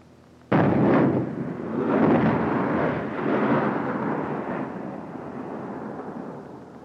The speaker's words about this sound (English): Those were heat rounds. High explosive.